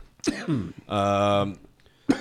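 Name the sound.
a man coughing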